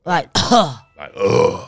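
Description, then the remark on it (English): A voice imitates the coughing from smoking weed with a few rough, throaty bursts: a short voiced grunt, a longer raspy hack, then a brief catch and a drawn-out gravelly exhale, fairly loud. “It's like I guess coughing.”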